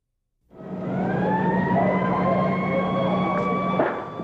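Ambulance sirens wail steadily and loudly after a brief silence, their tones gliding slowly upward in a sustained drone over a low rumble of traffic, with no pauses, on a university campus after a shooting, as ambulances bring the wounded to Brackenridge Hospital.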